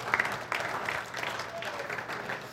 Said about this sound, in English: Yeah, I can clap for that.